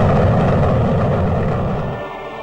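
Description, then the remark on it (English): A loud, sustained rocket-engine roar with a deep rumbling low end and a broad hiss on top, holding steady before easing off slightly at the end. No one speaks. “3, 2, 1, 0, all engine running.”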